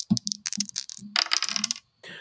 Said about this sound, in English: We just need 2d6. Okay, and roll it twice. Let me open the dice box here. Here we go. I'm gonna try to get my microphone nice down here next to the table so you can hear this thing.